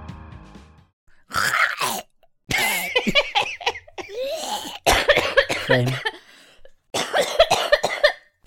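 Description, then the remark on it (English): A person coughs in several harsh, strained bursts separated by short pauses, loud, with groaning, rasping breaths between the fits. “That was just my coughing. That's just how I cough.”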